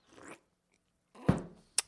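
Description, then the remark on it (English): Loud slurping and wet mouth noises from someone eating or drinking: a short smacking burst, a pause, then a longer noisy slurp and a sharp final smack. “Yeah, like I'm slurping soup over here.”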